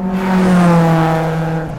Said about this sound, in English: Let's shift the conversation now from the roar of laughter to the roar of engines.